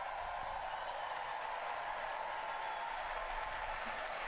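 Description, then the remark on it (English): Politicians in the House chamber applaud each other after the new House Democratic leader Hakeem Jeffries is congratulated; the dense clatter of many hands blends into an even roar that holds at the same level throughout, with no voices rising above it. “Yes, this is literally when they all, as Mort would say, a circle jerk, where they all clap for each other.”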